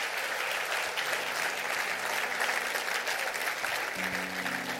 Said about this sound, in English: Stand to your feet, you're awesome people. Clap your hands real big as you're standing, because God's in the house. God's in the house. God's in the house.